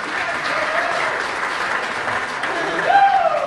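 A crowd claps steadily and loudly for a few seconds, a dense wash of applause, with a high whoop or whistle rising above it near the end.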